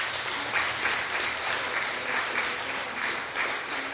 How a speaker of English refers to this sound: And let's give them another round of applause, can we?